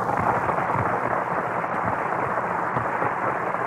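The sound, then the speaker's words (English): Loud, sustained applause from a graduation audience as a music school's highest honor student is presented, a dense wash of clapping that holds steady for the full few seconds with no voices or breaks. “He shouldn't applaud so loudly, should he?”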